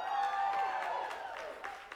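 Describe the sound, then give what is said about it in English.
A church audience in Columbia claps and cheers together, scattered hand claps mixed with sustained, high-pitched whoops and voices, fairly loud and steady, with a tonal musical hum underneath, celebrating the announcement that the pastor's third baby is four months away. “And those of you that are clapping and celebrating, we're grateful for that.”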